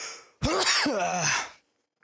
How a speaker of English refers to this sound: So with that being said, I gotta sneeze.